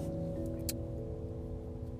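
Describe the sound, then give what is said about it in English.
Muffled, steady low hum fills the cabin of a parked car while it rains outside, like an engine idling or fan running, with one brief soft tick partway through and no one talking. “Yep, I'm sitting in my car.”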